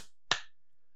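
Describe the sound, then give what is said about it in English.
One sharp hand clap, given to begin a prayer, rings out on its own, a quick bright crack with a brief fading tail, followed by silence. No one speaks. “Hey, are you ready to do the Pure Boys prayer? Clap.”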